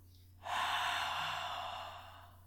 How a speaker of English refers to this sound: And then also when you do a breathe, you go in through the mouth and then open your jaw.